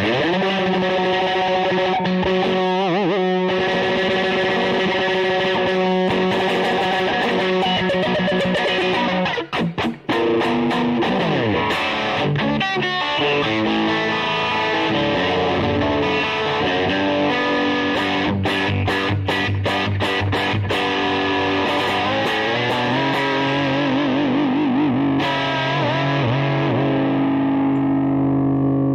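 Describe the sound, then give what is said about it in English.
A heavily distorted electric guitar plays loud, sustained chords and sliding bends, thick and saturated throughout, with occasional choppy stabs and no voices. “Too much distortion.”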